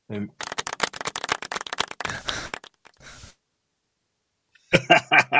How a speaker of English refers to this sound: That's the weakest round of applause I've ever heard.